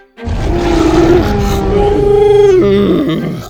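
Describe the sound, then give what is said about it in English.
Dinosaurs let out a loud, deep, sustained roar, rumbling and growling for about three seconds before fading out, with no talking. The dinosaurs are down below, looking up as they roar. “The dinosaurs down below were looking up at them and roaring.”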